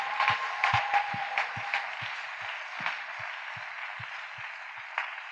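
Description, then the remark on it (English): A crowd claps for Jesus after a testimony in a steady wash of applause, with a regular low thumping beat running beneath it for several seconds at an even, moderate level. “But clap for Jesus for this testimony.”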